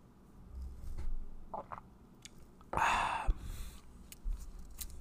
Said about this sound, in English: Take one more sip of this coffee.